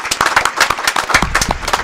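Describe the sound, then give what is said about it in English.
An audience applauds a DJ, with many hands clapping in a dense, steady patter that stays loud for the whole moment, and no voices rise above it. “Round of applause for …, please”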